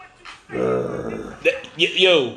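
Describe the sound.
A man's voice imitates a dog growl, a sustained low rumbling snarl lasting about a second, followed by a couple of short, rising vocal yelps.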